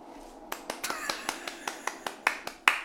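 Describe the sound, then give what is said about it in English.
Hands clap about a dozen times in a steady, fairly quick rhythm, each clap a sharp, crisp crack, starting after a short quiet moment and growing slightly louder toward the end. The clapping is for Jeb Bush, in response to "Please clap." “Why am I clapping for Jeb Bush?”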